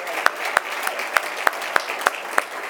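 Audience applause heard as steady, evenly spaced handclaps, about nine sharp claps at a regular beat over a low background hush, with no words spoken.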